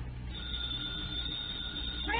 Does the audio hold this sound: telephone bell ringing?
yes